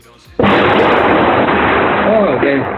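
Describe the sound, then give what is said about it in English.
A sudden, sharp thunder clap breaks in and rolls on as a loud, broad rumble that barely fades over the next two seconds, with a faint voice briefly audible beneath it. “There's a thunder clapping.”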